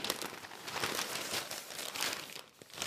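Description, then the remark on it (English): Steady rustling and crinkling of newspaper pages being looked through for ads on a train, a dense crackly texture with small irregular bursts, continuing for a few seconds with no voices. “I got to look through this paper at all the other ads.”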